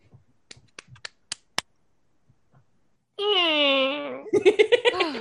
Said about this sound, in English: How many claps do you think for this one? 5. Try it.